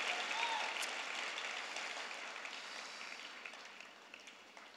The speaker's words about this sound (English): Amen. Clap for the word of the Lord. Hallelujah.